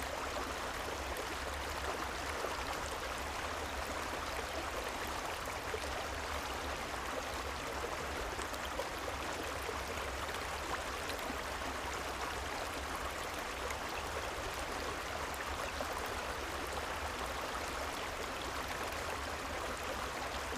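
A steady, continuous babble of flowing stream water, even and unbroken throughout, with a soft hissing wash and no voices or other sounds.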